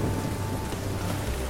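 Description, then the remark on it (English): A steady thunderstorm at sea: dense, hissing rain pours without a break while a deep, low thunder rumble rolls underneath the whole time, with lightning cracking across the sky. No voices, just the constant wash of the storm. “you see some lightning kind of crack across the sky, and it kind of illuminates on the back end this giant wave.”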